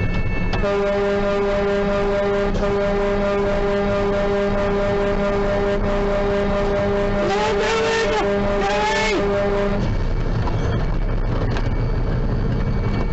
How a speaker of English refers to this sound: And this guy has no brakes. So he's going downhill at a high rate of speed.